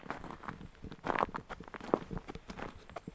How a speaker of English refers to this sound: And my footprints sound quite loud. I'm on the gravel, I'm getting under the moss.